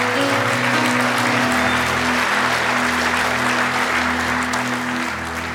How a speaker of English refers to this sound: One more time, if you love him, let me hear your hands.